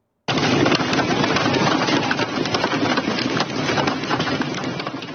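Heavy hail pounds down on a concert at the Red Rocks Amphitheater in Colorado in a loud, dense, continuous clatter of countless sharp impacts, a rapid rattling roar that starts abruptly and holds steady throughout, with no talking.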